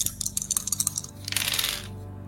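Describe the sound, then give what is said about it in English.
Dice clatter and tumble in a quick run of sharp clicks, followed by a brief rattling rush as they settle, with no voices; the roll comes up as two fails. “Two fails again, because my dice hate me.”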